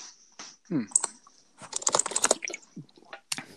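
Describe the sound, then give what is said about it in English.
Rapid, uneven clatter of keys on a computer keyboard, fairly loud, coming in bursts with brief pauses and a faint voice murmuring in the background. “why don't you ease up on that keyboard?”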